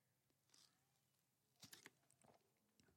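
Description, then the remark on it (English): Someone drinks water in a quiet pause, with soft wet mouth clicks and a short cluster of gulps and swallows near the middle, followed by a faint final sip. “Yeah, I'm taking a drink of water because just for dramatic pause effect, right?”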